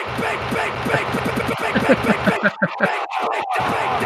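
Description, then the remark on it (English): A soundboard clip of a dog barking repeatedly in quick bursts, loud, over a dense wash of crowd-like background noise, with the barking growing sharper and more choppy toward the end. “Here comes the big dog!”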